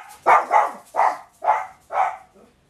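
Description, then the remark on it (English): Dogs barking in the back: five sharp, fairly loud barks in a quick, slightly uneven rhythm, with no talking, followed by a faint trailing yip. “Sorry, my dogs are barking in the back.”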